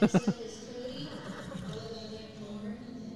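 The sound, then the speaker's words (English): Three quick, sharp hoof clops ring out at the very start, distinct, then give way to a steady murmur of voices carrying on underneath for the rest. “We've been watching your horses for a while.”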